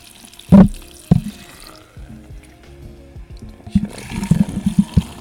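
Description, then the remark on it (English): Liquid poured over and very close to the microphone for ASMR, with a couple of loud splashy bursts early on, a quieter trickling stretch, then a busier run of bubbling, glugging pours toward the end. “Pouring over the microphone, always a good idea.”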